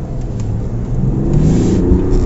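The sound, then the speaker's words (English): A car pulls away from traffic lights and accelerates, its engine note climbing in a steady, rumbling surge that grows louder over a couple of seconds, with no voices. “Just pulled away at the lights and it certainly shifts.”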